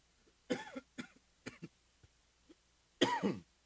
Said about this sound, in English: Excuse me, that's not COVID. That's the emphysema. That's not COVID when I cough. That's the marijuana.